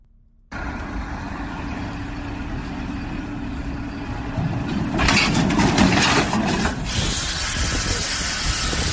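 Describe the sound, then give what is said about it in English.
A truck engine starts up abruptly and runs steadily, a low rumbling drone with a hissing burst partway through before settling back to a constant idle. “I want you to see what it is, and somebody help me with, what's the matter with truck drivers today?”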